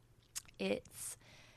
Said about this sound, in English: Hold on, coffee sip.